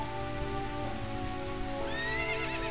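A horse lets out a loud, shrill whinny that rises sharply near the end as it rears up, over a steady hiss of heavy rain. No one speaks.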